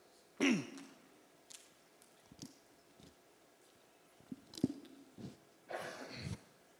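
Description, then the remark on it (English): A preacher takes a drink of water at the microphone during a sermon: a sharp breathy intake, a few faint gulps and small clicks, then a breathy exhale, all with no talking. “Kind of hard to drink out of a microphone.”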